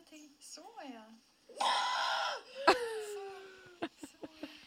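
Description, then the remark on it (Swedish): A woman screams during childbirth labor, about 25 minutes before giving birth: a loud, strained, sustained scream, framed by shorter wavering moans and a few sharp gasping breaths at the end. “Ja, vi avslutar med ett förlossningsskrik.”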